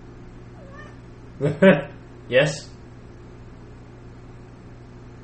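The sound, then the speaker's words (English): A cat meows twice in quick succession, fairly loud, each call rising then falling. A person briefly speaks, and a steady low hum runs underneath. “Meow.”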